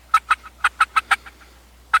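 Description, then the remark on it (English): A turkey gobbles in a rapid, rattling burst of about seven loud pulses, fading into softer trailing notes, then one more sharp call after a brief pause. Clear, no talking. “I mean, how are these fine turkeys going to be transported to the grocery store after we leave here?”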